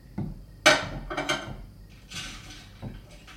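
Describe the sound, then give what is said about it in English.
Dishes clatter into a sink in a few sharp clanks and knocks, with bright ringing hits followed by softer scraping clinks, and no voices. “Don't worry, I'm just putting these in the sink.”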